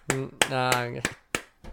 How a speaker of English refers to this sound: Yeah, well, you're not supposed to clap for yourself.